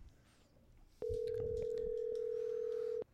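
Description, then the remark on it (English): A telephone dial tone switches on abruptly as a phone call is placed and holds a steady, unbroken hum for about two seconds before cutting off, loud over faint background noise. “This segment brought to you by the Dial Tone.”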